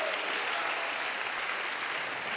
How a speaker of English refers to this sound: And if you know God is able to do anything but fail, somebody stand on your feet and clap your hands. Magnify the name of Jesus. Hallelujah.